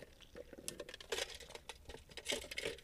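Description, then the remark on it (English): Quiet sipping of coffee from a cup, with soft slurps, small wet mouth sounds and a faint clink of the mug, no talking. “So before we get started, let's get a sip of water. I mean, coffee.”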